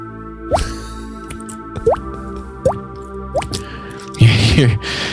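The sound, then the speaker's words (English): Four hollow, rising water-drop plops made by flicking a cheek, spaced unevenly, followed by a brief burst of rustling noise over a faint steady hum. “You're flicking your cheek, right?”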